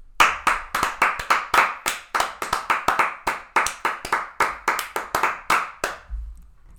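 Steady, brisk hand clapping in applause for a speaker after his short sermon, about two dozen sharp, crisp claps in an even rhythm lasting around six seconds before stopping. No voices are heard.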